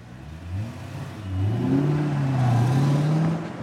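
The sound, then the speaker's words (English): A car engine revs up and accelerates as the car turns off onto a little country road to avoid a traffic jam, its low hum rising and climbing in pitch before settling into a steady, louder drone, with a broad wash of road noise throughout. “I'll just turn off and duck this jam.”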